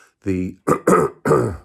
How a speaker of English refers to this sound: I've got this interesting throat cough going on, and I don't know if it's a cough or it's just early morning, just got up, doing a podcast scenario.